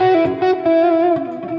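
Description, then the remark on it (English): A loud electric guitar plays sustained, slightly distorted melodic notes in C sharp minor with a wash of reverb and echoing delay trailing behind each phrase, no voices present. “What I want you to notice is that I've got a little bit of reverb on. And I've got a little bit of delay.”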